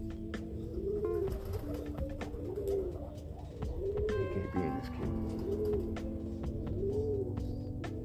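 Pigeons coo steadily, a series of low, rolling, rounded calls repeating every second or two over a constant background hum, with no talking.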